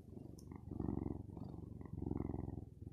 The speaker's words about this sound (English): But enjoy the purring of the cat. So let me tell you about him. So he's a year old. I can't quite remember his birthday.